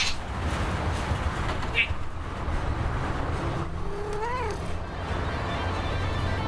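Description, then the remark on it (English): A single drawn-out cat meow, rising then falling in pitch, sounds partway through over a constant low rumble of background noise. “I've got a couple of cats, so when it's close to mealtime, they'll start meowing or coming in wanting attention.”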